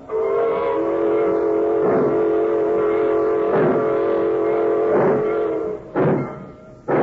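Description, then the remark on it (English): A train whistle blows in one long, steady, chord-like wail for about six seconds, with rhythmic rumbling bursts of a freight train getting underway beneath it and a couple of heavier chuffs as it ends. “She's pulling out.”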